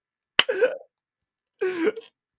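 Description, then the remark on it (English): Two separate hiccups, each a sharp catch in the throat followed by a short voiced squeak, about a second apart, fairly loud with silence around them. “You gave me hiccups with that one.”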